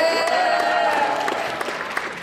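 A crowd applauds loudly and steadily for a contestant called the blue demon, the audience choosing the winners by applause, dense clapping with a few sharper claps standing out, while cheering voices rise over the noise.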